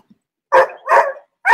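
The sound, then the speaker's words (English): A male dog barks loudly, two sharp barks about half a second apart with a third starting at the end, no talking over them. “See, I want to turn around and see what he's barking at, but I can't”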